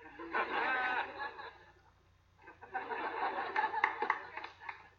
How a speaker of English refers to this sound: Who is clapping?